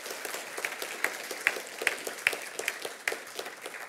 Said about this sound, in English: What a great time of worship that was, wasn't it? I felt the presence of God in a powerful way. Let's give them a clap. Come on.